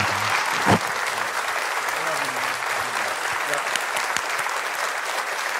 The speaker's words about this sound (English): Hey, would you do me a favor? I'm gonna dismiss these guys, let them be seated, but can we give these three gentlemen a round of applause and say thank you?